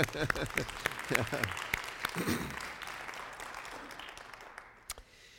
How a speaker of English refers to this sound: So I'm going to give them a little applause, blessing, and you can join me if you want.